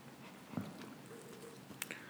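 Faint scuffling and a couple of soft taps and clicks as a puppy shifts about, with no talking.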